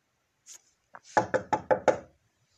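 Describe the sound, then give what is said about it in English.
Five quick knocks on a wooden surface right beside the speaker, in an even, rapid rhythm, fairly loud, preceded by a faint rustle and a soft tap. “I don't know if y'all just heard me knocking, but it's a wood right here next to me.”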